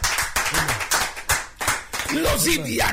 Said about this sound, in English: Hallelujah. Amen. Clap for God, somebody. Amen.